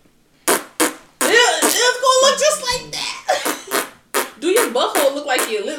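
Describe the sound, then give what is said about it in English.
Someone blows a series of wet, sputtering raspberry noises with their mouth, imitating a fart, in several loud bursts mixed with brief voiced talk. “But what if I fart while they trying to do it?”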